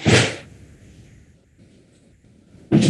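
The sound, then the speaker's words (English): A door is closed with a loud, sharp sweep of noise, followed by quiet room rumble and then a second abrupt burst as it shuts. “But can you close the door so it's not loud and echoing?”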